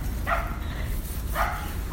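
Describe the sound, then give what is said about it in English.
A dog named Waffy barks twice in sharp, evenly spaced bursts, with a third bark starting at the very end, loud over a low rumbling background. “Shush, Waffy! Goodness, we've got a lot of work to do here.”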